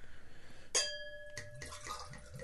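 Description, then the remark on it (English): A bottle clinks against a glass with a brief ringing tone, then a no-bake chocolate oatmeal stout from Blue Canoe Brewing in Titusville, Pennsylvania, pours steadily into it, a fizzy gurgling rush of beer filling the glass. “Let's see how this pours.”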